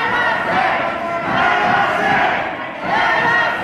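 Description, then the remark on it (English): A large crowd of angry protesters in front of the State House in Lansing, Michigan, yells "Let us in" together in loud, dense waves, the shouting rising in about three chant-like swells with brief dips between them. “Angry protesters stood in front of the State House in Lansing and yelled, "Let us in."”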